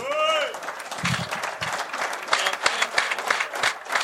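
An audience bursts into steady, dense applause that carries on for several seconds, opening with a brief high-pitched cheer or whoop over the clapping.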